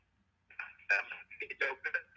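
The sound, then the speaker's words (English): During a phone call, a voice comes through a thin, tinny phone line that breaks into choppy, garbled bursts, so the speech is unintelligible and cuts in and out. “Man, your phone fucking up, dog.”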